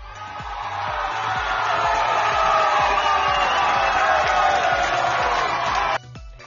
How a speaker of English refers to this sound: So let's give a round of applause to any armed forces out there.